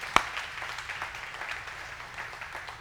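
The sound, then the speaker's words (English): An audience claps together, a sharp single clap up front followed by a steady, soft wash of many hands applauding for a few seconds, with no one speaking. “Can we clap for that?”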